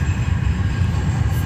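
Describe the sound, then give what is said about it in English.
A steady low rumble of a train pulling away from a station along the rails, a continuous heavy mechanical drone with no voices over it. “But, like, I hate missing the train by just a few freaking seconds.”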